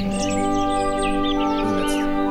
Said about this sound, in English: It's nice. The birds are chirping.